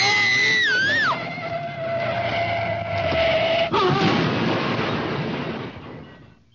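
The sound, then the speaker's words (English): A car with failed brakes crashing into a tree: warbling, screeching tones and a long sustained horn-like wail, then an abrupt loud impact around the middle, followed by a rough, noisy rumble that fades out. “It was a tree we hit.”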